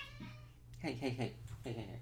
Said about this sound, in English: Hey! Sorry, the cats are fighting.